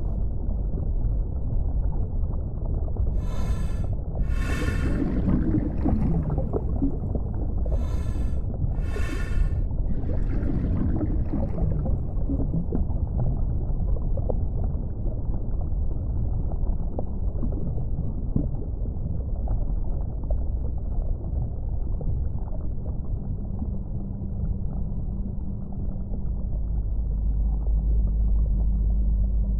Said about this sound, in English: Before I know it, the current drags me on down the narrows.